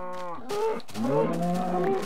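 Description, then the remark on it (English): Several cows moo in quick succession, long drawn-out lowing calls that overlap one another, fairly loud, with no talking. “I've found some cows.”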